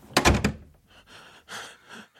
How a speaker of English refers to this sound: Who closed the door?